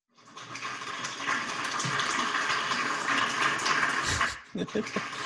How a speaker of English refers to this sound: Sorry. It almost sounds like some like water or something. It was supposed to be an applause.